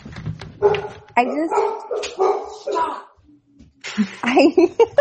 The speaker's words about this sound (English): And so her dogs are barking. They start. So she thinks that there's something going on.